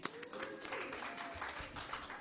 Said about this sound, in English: Sorry, we're just having a bit of mic difficulties. Here comes my lovely assistant. Give him a clap.